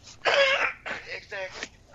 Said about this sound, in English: Gesundheit.